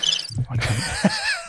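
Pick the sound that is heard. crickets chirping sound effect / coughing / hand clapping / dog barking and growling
crickets chirping sound effect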